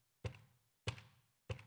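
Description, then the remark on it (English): Three loud, hollow knocks land at a slow, even pace, with no talking, mimicking a woodpecker pecking a hole into the side of a house's fireplace. “So a while back, I heard this banging outside of the house, on the side of the house.”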